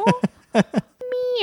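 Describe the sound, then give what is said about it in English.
A person mimics a cat the way a neighbor calls for his cat around the street, giving four short meows with falling pitch, then a longer drawn-out meow whose pitch wavers and rises at the end. “A couple of nights ago, he was stalking around the street, just going meow.”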